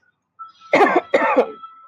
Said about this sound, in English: But you see, when I'm coughing, this is something that happens when people get in the church.